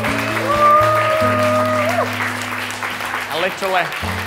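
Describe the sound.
An audience claps steadily throughout, a dense wash of applause that stays fairly even, while sustained keyboard or organ notes hold underneath and a few voices murmur toward the end.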